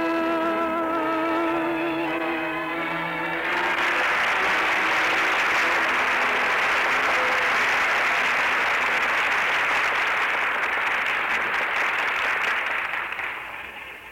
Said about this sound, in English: Listen, they're still applauding.